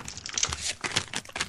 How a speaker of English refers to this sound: Opened one plastic bag and to find another plastic bag.